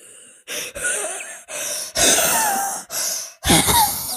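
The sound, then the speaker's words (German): Loud, exaggerated heavy breathing, a rapid series of about six harsh, noisy breaths with short gaps, each a rough hissing rush of air, some wheezy or gasping. “Könnt ihr bitte aufhören, so zu atmen?”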